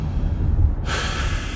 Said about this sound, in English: Like when I be stressed out, it's on a frequent basis, bro. I'm taking a deep breath. Yeah. I just take a deep breath, and it helped me so much. I swear.